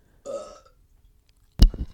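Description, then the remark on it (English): A loud burp rumbles for about half a second, followed after a pause by a sharp mouth noise or second short belch burst, with no talking. “I just don't want you to burp, period.”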